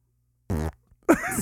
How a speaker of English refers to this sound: I farted.